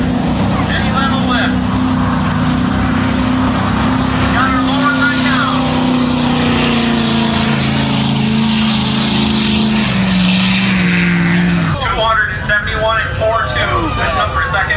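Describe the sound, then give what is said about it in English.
A SEMA truck's engine roars loudly and continuously during a sled pull, its pitch holding and slowly dropping as it strains, then cutting off abruptly near the end, with faint crowd or voices in the background. “I sled pulled with my SEMA truck.”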